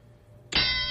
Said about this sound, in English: Tone, I need that bell, bro.